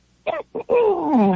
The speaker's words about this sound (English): Well, first I have to clear my throat.